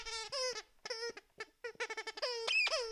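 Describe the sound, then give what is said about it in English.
A dog plays with a squeaky toy snake called Mr. Snake: a rapid, irregular string of loud, high-pitched rubbery squeals, a dozen or so bursts in quick succession, some long and wavering, with no talking. “And you might be able to hear my dog playing with a snake, or Mr. Snake, as its full title is.”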